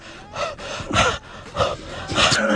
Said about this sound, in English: I don't know who's mouth-breathing more today